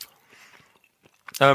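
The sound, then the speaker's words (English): Quiet chewing of a dry, cheesy Christmas snack, with faint crunches and mouth clicks scattered over a second or so, before a voice abruptly cuts in loudly. “I'll put some of them in my mouth. Just very dry.”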